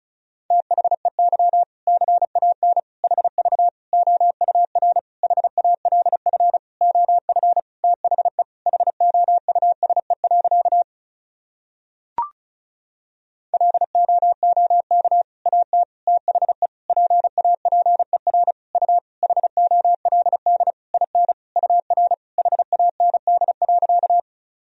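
Fast Morse code beeps at 35 words per minute, sending practice sentences built from common words and abbreviations, in a single steady mid-pitched tone, keyed in rapid dots and dashes, with a short pause and a faint click midway before the sending resumes.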